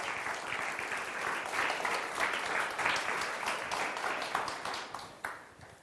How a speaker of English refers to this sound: Give them a round of applause as they do so.